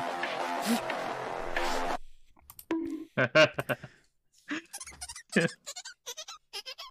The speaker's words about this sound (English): No. Excuse me. What in the squeaky toy nonsense is that?